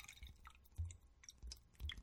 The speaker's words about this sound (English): She's going to pour the water in her glass. And I poured the water in my glass.